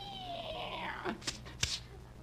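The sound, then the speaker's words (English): A single drawn-out cat yowl slides downward in pitch, followed by a couple of brief, sharp clicks or knocks. The sound is fairly quiet against a low background hum. “Meow. Rochester, did you feed the cat?”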